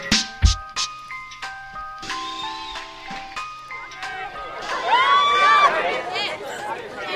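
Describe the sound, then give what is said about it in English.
Hundreds of teenagers chatter while lined up to go into Hell House, an overlapping babble of voices that swells louder in the second half, with a simple chiming tune playing over it early on. “Hundreds of teenagers are lined up to go into Hell House.”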